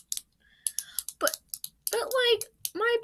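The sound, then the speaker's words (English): A pen clicks several times at an uneven pace, sharp, with a voice talking over the later clicks. “Sorry for clicking my pen.”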